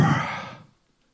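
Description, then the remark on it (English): A single forceful breath pushed out, a voice imitating rushing wind to illustrate the Hebrew Ruach, the Holy Spirit, as breathing out and moving wind, loud at first and fading away in under a second into silence. “The very idea of Ruach, the spirit of holiness, is supposed to be like if you were breathing out.”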